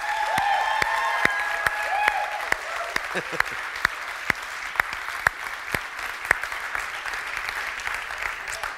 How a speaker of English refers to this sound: Amen. Give him a big, big round of applause. Yes.